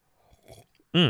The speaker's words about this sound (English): Yeah, I took that sip too. ASMR. You're getting a podcast and ASMR at the same time.